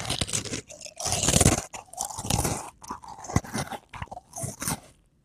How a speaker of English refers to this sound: I have to make way for your chewing. Make way.